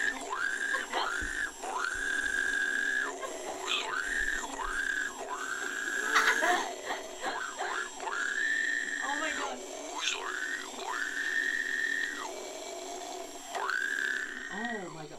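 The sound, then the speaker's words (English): A woman imitates a pig, letting out about ten loud, high, strained squeals in steady succession, each held for roughly a second with brief gasping gaps between them. “and my last pig squealing video sucked, so I'm gonna be doing a redo.”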